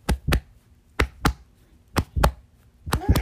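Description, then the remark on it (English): A hand pats against a chest over the heart as part of a game, in quick double beats, four pairs evenly spaced, each a soft, dull thump with no voices between them. “I want you to pat your heart when I say things we can do to use our hearts to become more like Jesus.”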